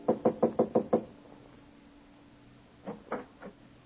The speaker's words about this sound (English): Walk down the carpeted hallway. Rap on the panel door.